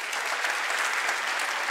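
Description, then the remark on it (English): A crowd applauds steadily, a dense wash of clapping with no gaps or pauses, holding at an even, fairly loud level throughout. “Give her one more round of applause, if you would.”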